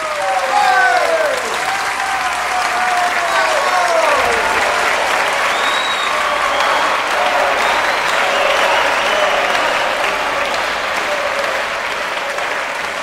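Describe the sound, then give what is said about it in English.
An audience applauds loudly and steadily for the whole stretch, dense clapping mixed with scattered cheers and whoops rising above it, full with no pause. “Still stunned by what it had just experienced, the audience was jolted back into reality by the sound of a long, sustained clap, followed by a few sparsely isolated claps, which quickly turned into cheers.”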